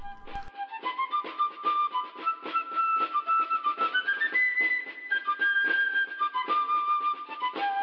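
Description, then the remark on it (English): A lively tune, I Wish I Was in Dixie, on a high, piping whistle rides over a steady beat of drum hits, played together by a one-man band dressed like Uncle Sam, loud, with no talking. “There was a one-man band dressed like Uncle Sam, playing I Wish I Was in Dixie with a drum and whistle.”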